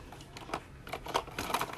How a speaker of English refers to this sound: Did my pen just drop in the back? Yep, it did.